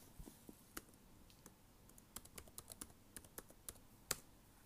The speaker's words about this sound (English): Let me log in real quick. I'll give you keyboard ASMR.